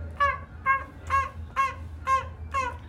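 A voice imitates a seagull with six loud, nasal squawks in a steady, evenly spaced rhythm, each call short and harsh, over a low constant hum, in a first-floor commons.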